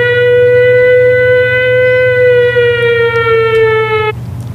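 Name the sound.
alarm siren sound effect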